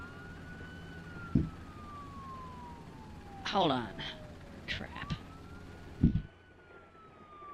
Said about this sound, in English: I can barely hear you because these police. There's about 16 police cars outside, and there seems to be a hostage situation next door.